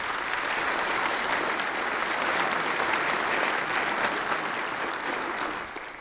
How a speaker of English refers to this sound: Would you welcome these people with a round of applause? Yes.